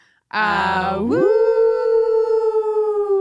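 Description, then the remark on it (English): Several people howl together in imitation of wolves, a loud chorus that starts with a rough, noisy burst and then rises into a long, sustained, wavering howl. “if he would howl out with us for this very special episode.”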